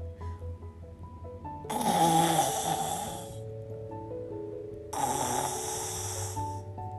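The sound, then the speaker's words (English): Two long, rasping snores from a maid asleep in the cool shade of a tree roll out a few seconds apart, each a loud breathy rumble, while soft sustained musical tones continue quietly underneath. “The maid, down there, in the cool shade of the tree, fell asleep.”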